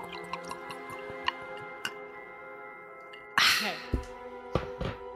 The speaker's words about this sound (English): Ooh, she's pouring the peanut butter whiskey now.